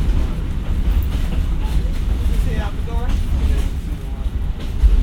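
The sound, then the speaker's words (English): A steady, heavy low rumble of a vintage Chicago streetcar on rails coming up from behind, constant, with faint voices briefly audible midway through. “So there's a Chicago car coming up behind us.”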